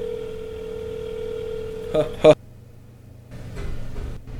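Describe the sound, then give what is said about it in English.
A steady telephone ringing tone of a phone call holds for about two seconds, broken by two short, sharp beeps, then gives way to a quiet low hum with faint background noise. “It appears to be ringing now.”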